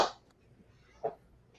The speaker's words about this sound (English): Big clap there